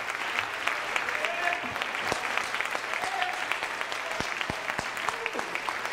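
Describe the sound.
An audience in a church claps together, a dense, steady wash of many hands applauding at once, with a few faint voices calling out underneath.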